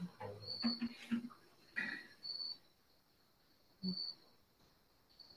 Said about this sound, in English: When we were meditating earlier, I always feel very fortunate when I meditate here. But then listening to the crickets tonight, it's just, I mean, it's Frenchtown, you know, Frenchtown, New Jersey. But it's like the perfect place to practice a Dhamma